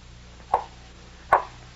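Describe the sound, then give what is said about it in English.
Two solid knocks on a dungeon wall, coming from the other side of the wall in answer to knocking, spaced just under a second apart, each a short dull thud with a slightly muffled tone, heard alone over a faint low hum with no voices. “Each time I knocked, the knocks were repeated on the other side of the wall.”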